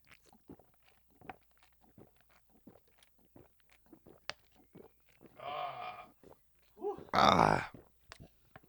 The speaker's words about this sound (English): I was trying to get my throat close to the mic so they could hear the gulping. Yeah, it's ASMR.